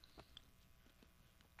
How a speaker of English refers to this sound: Or you swallowing into the mic is really great, by the way.